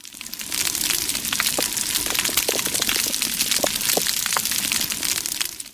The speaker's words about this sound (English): Bacon frying. It does sound a lot like bacon frying. Fire? Just fire burning? Mm-mm. We're back underwater again, of all things. Oh. Is that coral growing? That counts. It's coral reef. Wow.